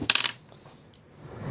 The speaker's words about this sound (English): roll me some dice for Cardigan